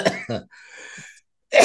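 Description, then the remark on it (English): Two quick, harsh coughs, then a quieter sustained raspy sound, followed by another loud burst of coughing at the end. “Like it's interesting how you're coughing at the same time you're talking about mom and cat getting sick.”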